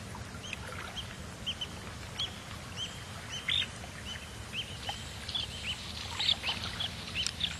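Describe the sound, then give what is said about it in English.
Many birds chirp and call in scattered bursts at a coastal lagoon in South Africa, over a steady low rumble of wind and open water. No one speaks. “According to BirdLife South Africa, it supports more than 20,000 birds of 250 different species, which is quite remarkable.”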